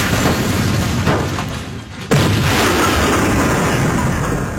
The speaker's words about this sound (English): That sounds more like a train, like a train wreck, like it's a bad thing versus like an explosion, like it's a good, yeah, like a good explosion.